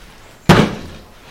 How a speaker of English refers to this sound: Well, we rammed our way in through the back door, as is our way, I suppose you'd say.